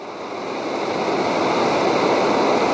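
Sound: fast-flowing river water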